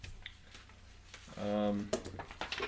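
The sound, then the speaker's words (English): Two eight-sided dice clatter and tumble across a hard tabletop in a few quick, sharp clicks, fairly quiet, as a player rolls damage for an attack in a tabletop game, with a brief hummed voice sound partway through. “Alright, I'm going to roll damage for that real quick.”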